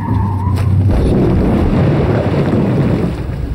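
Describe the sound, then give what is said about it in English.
A car engine drones briefly as the driver stomps on the gas, then gives way to a loud, sustained rush of churning water as the car plunges into Lake Jericho at night, bobbing and sloshing before its nose dives, with no voices. “We hit the water. The car bobbed like an apple, then its nose began to dive.”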